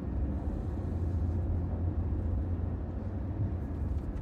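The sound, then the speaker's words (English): A steady, low rumble of many cars driving into the village of Cruxmont, the engine and road noise droning continuously without pause. No one speaks. “First time I've seen this many cars coming into Cruxmont.”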